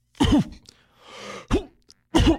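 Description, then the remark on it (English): A voice imitates a man's habitual single cough: three short, loud, throaty bursts, with a soft breathy exhale filling the gap between the first and second. “he's always doing that cough where he's like, it's just one cough.”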